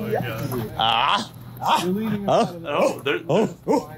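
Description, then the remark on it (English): A person imitates a dog barking, giving a string of five or six short, loud woofs after a brief whining, yelping sound. “Barking like dogs, dude.”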